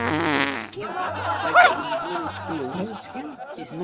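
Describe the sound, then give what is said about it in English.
A buzzy, raspy fart sound at the start, fairly loud, followed by people talking and snickering with low laughter over a steady low hum. “Then skill is farting.”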